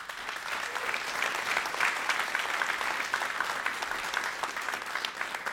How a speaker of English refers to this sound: So if you guys could just give a round of applause.